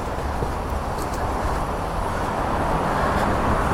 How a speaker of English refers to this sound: There's a few cars. I think it's acceptably empty.